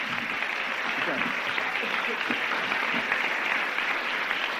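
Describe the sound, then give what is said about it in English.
Sustained applause from a sizeable crowd at a gospel meeting, clapping for a man, a dense, even wash of many hands clapping at once, steady and fairly loud throughout without pause. “Listen, you give him a clap.”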